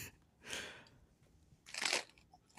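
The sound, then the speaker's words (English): Two crisp crunches about a second apart as someone bites into a cheese sandwich with crunchy romaine lettuce, with faint chewing noise between them and no talking. “Oh, damn, that's a good crunch. Got some romaine lettuce in nice.”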